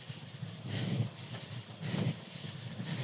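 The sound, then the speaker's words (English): A small Volks Railway electric train rumbles past a nudist beach, its low rolling hum rising and falling in rhythmic surges with faint rattling and hiss, with no voices. “That's the Volks Railway.”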